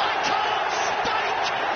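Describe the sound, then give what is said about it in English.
A large crowd at the final of the World Darts Championship cheers wildly after Michael Smith hits double 12 to finish a leg, a dense, steady roar that never lets up, with a few sharp bangs and claps popping through the noise. “The crowd are going berserk.”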